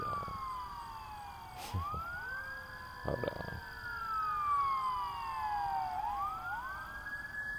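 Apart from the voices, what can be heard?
ambulance siren passing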